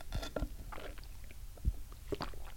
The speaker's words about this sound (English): First, I'm going to take a sip of coffee to give me some energy to do this.